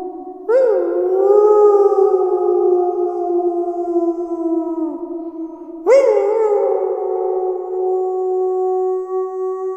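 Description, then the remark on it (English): Wolves howl in two long, sustained, mournful calls, each rising at the start and holding steady for several seconds. Loud, with no talking. “In Michael Runce's 1997 book, The Howls of August, he recounted a series of stories of his encounters with Algonquin Park wolves during his 25 years working as a park naturalist.”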